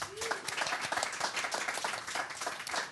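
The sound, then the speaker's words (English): An audience at a festival at Indy Hall breaks into a round of applause, many hands clapping in a dense, steady patter that holds at an even, moderate loudness for the full three seconds, with no one speaking. “I'd like to give them all a big round of applause.”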